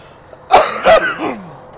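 A short burst of harsh coughing from breathing in secondhand weed smoke: two or three strong hacks in quick succession, trailing off into a raspy throat-clearing sound, with no talking.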